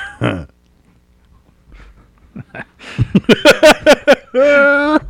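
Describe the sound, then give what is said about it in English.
A pig makes a brief grunt, then after a pause a quick run of sharp oinking snorts follows, ending in a loud, drawn-out squeal. “I can't even say anything bad about that pig. I like that pig.”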